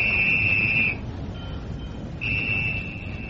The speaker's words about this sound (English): The whistle? Yes, the signal, Lowry.